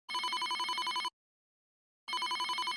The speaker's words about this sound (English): Suddenly, Joni's cell phone rings.